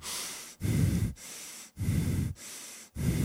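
Heavy breathing close to the microphone, with loud, rough breaths alternating with softer airy ones in a steady rhythm of about five breaths. No one speaks.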